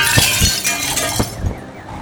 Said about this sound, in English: As you do so, you can see that one of the beasts, one of the bat hawks, comes smashing through a window